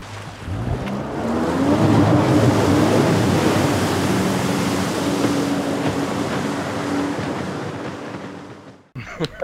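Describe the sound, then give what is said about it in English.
A jet ski engine drones steadily over a wash of rushing water noise, its pitch climbing early and then holding, before the sound cuts off abruptly with a few clicks. “I see a jet ski.”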